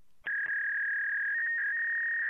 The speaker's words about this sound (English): Back then, you would actually hear the computer communicate with the teletype over this phone line. Kind of sounded like a fax machine. And the computer was actually in a building far, far away from where you were actually typing.